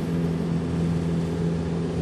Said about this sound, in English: And yet another distraction, ladies and gentlemen. A fucking leaf blower. A large leaf blower. Is just randomly on the street.